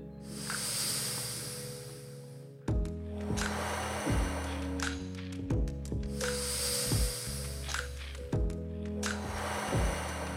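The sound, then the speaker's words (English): Slow, deep breaths in and out, long airy whooshing rushes lasting a few seconds each, over steady low instrumental music with regular plucked notes. No one speaks. “Deeply breathing in, slowly breathing out, inhaling to hold the breath for 20 seconds.”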